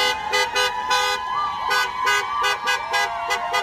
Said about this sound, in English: JFK protest. It was huge. Once the taxi drivers just honk their horns, it became like just electric. Yeah, it was beautiful.